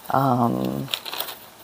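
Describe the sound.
A short voiced sound gives way to crisp rustling and a few sharp flicks as sheets of paper are handled and shuffled, lasting under a second.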